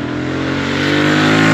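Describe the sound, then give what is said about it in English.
A 650 twin-cylinder motorcycle engine accelerates with a steady, droning hum that grows slightly louder and climbs in pitch, with no talking. “Yet you know that you're on a proper combustion engine type of bike.”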